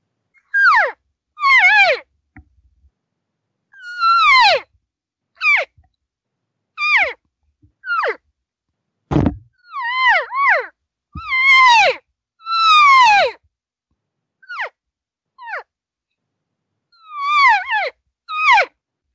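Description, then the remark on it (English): Imitated elk cow calls, made to sound like cows talking to each other, aimed at any elk out there: a string of short, high, descending mewing chirps, often in quick pairs, repeated about fifteen times with brief pauses and one sharp knock partway through. No talking. “the cows are talking to each other”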